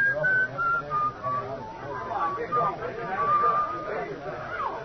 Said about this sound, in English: I get up and I'm making for the door when I hear it. And then I remember I'd been hearing that whistling right along and didn't notice it.